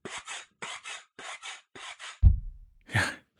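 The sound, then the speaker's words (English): A pogo stick being bounced on: a run of paired raspy, creaking strokes, then one heavy low thud that rings down, followed by a bright squeak. No voices. “What's that thudding, squeaking sort of...”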